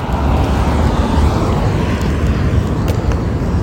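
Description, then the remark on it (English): Loud, steady low rumble of street traffic, a continuous wash of engine and road noise with no clear break or single distinct pass. “It's usually not that much traffic over here.”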